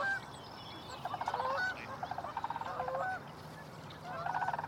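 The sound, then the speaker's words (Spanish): Ducks call across a wetland in the Helena Valley in repeated nasal, honking bursts, several overlapping voices over a steady outdoor background hum, with no one speaking. “Y si logramos excluir las carpas, ¿Cuántos patos más podríamos mantener aquí?”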